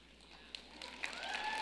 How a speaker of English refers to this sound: And I appreciate you for clapping first, sir, with the glasses. I saw you. And for me, that's the most important part. And for the same reason I saw that gentleman who actually started the whole clap in this room